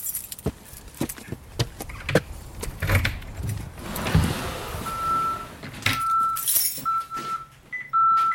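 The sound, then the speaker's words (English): Keys jangle and a lock clicks in a series of sharp metallic rattles as the door of the South Dome observatory housing the Grubb Telescope is unlocked and opened, followed by a few steady electronic beeps. No one speaks. “So I'll just go ahead and open up the door.”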